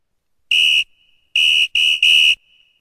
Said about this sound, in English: And so we've had a brief break, and the whistle is going to go for the second half.